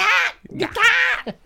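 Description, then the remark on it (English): A voice imitates a bird's mating call: two loud, drawn-out, raspy caws like a crow, followed by a couple of short, clipped vocal bursts. “That's a weird mating call.”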